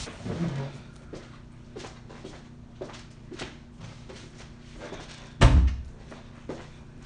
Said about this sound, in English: Let me just get that door.